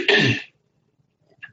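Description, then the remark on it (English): A single harsh, loud cough bursts out and cuts off after about half a second, leaving near silence with only a faint small noise afterward. “Yes, I got a cough.”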